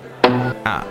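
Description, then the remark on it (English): Two sharp sneezes in quick succession, each bursting out loudly with a voiced, breathy tail, separated by a brief pause. “Gesundheit.”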